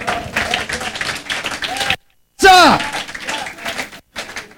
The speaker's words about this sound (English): Come on, give a clap offering to Jesus.